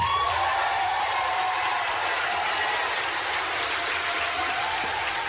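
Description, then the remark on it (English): Sustained applause from a large convention crowd, many standing up, after the Texas electors' votes put Donald Trump over the top; a dense, steady wash of clapping that continues loudly without pause for several seconds. “If you can't see, if you're just listening, people start to stand up and the applause goes on and on and on.”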